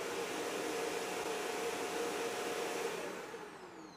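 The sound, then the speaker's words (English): A steady, loud electric hand dryer whirs with a broad airy roar and a faint motor hum, then begins winding down, its pitch dropping slightly in the final moments. “It does sound like a pub hand dryer, doesn't it?”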